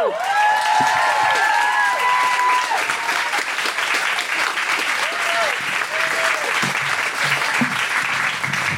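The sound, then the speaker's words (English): A large audience at a stand-up comedy show on the Gold Coast claps loudly and steadily throughout as comedian Mel Buttle is welcomed to the stage, with excited whoops and cheers rising over the applause near the start before settling into continuous clapping. “Thanks for clapping, because that's a long walk.”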